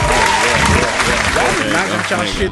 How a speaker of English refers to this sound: Give it up for him, man. Where the claps at, dog? I don't want to hit the wrong button. There we go.